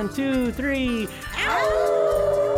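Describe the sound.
Several people on a host's Moondog Show howl at the moon together like dogs on a count of three, rising wavering cries overlapping loudly, one voice sliding into a long sustained howl at the end.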